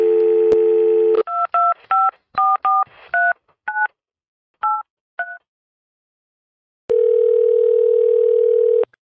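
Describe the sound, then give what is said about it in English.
A steady dial tone cuts off, then about ten crisp keypad beeps are punched in quick uneven bursts as a stepmother's phone number is dialed, followed by silence and another long steady phone tone. Clear, no voices. “Less than an hour later, Carly dialed her stepmom's number again.”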